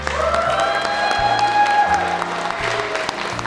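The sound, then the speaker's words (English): An audience applauds the performers and producers at the end of a show, steadily and loudly for the whole stretch, a dense wash of clapping, while music with sustained tones and a stepping bass line plays underneath. “Ladies and gentlemen, let's give another round of applause to our performers and producers of the show.”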